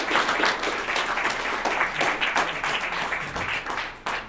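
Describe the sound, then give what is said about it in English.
An audience applauds panelists at the end of a panel, a dense, even wash of many hands clapping at a fairly loud level for several seconds without pause, with no voices standing out. “Let's have a big round of applause for our panelists.”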